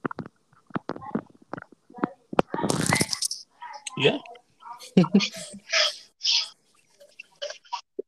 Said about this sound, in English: God bless you.